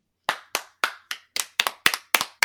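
audience clapping

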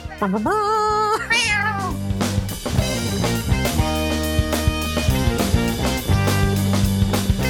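cats meowing and caterwauling

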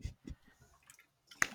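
person chewing food

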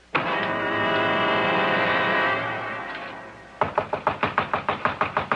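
pounding on a door

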